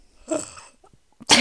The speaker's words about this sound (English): I was like coughing and yawning. Sorry, guys.